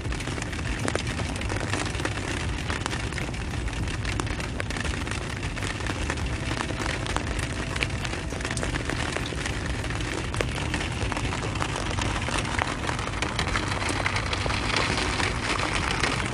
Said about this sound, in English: I'm just kind of enjoying, like, the rain. I don't know. I wonder what our, like, first humans kind of thought when they saw rain.